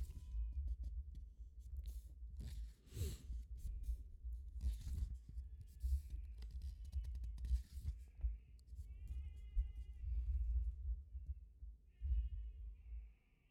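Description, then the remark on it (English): Goats that are out bleat several times in short, wavering calls, with the clearest cries coming toward the end, over a steady low rumble and occasional rustling bursts. No one speaks. “Sounds like my goats are out.”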